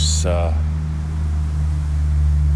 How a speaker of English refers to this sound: Let that traffic go by. I love listening to traffic instead of being it.